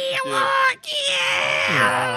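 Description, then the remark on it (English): A voice imitates a computer game loading from a cassette tape, making a sustained, warbling electronic screech with steady tones and a brief break midway, loud and continuous for about two seconds. “I still remember the screeching howl of those tapes.”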